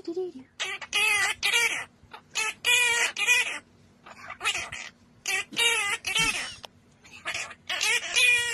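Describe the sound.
Two parrots squawk and warble in short, rhythmic bursts, loud, mimicking the melody of a bouncy song from The Muppet Show with scratchy, voice-like chirps separated by brief pauses.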